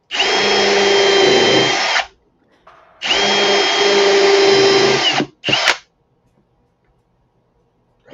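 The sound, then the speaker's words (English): A power drill runs loudly in two sustained bursts of about two seconds each, then gives a brief final spin, with a steady high whine and grinding as it bores into wood. “As you're drilling here”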